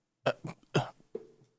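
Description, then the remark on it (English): A person fakes a fit of coughing up seawater: a few harsh, wet coughs in quick succession followed by a rough, throaty hack, fairly loud with no talking. “You cough up some seawater.”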